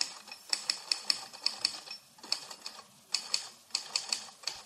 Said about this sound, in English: Frustrated, broke, he moved in with his father in St. Paul and pounded the typewriter keys some more.